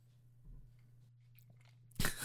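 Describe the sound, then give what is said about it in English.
A quiet stretch with a low steady hum, then a sudden loud, crunchy burst near the end as someone takes a sip of ice water on the microphone, with ice shifting in the glass. “just took a sip of ice water on the mic.”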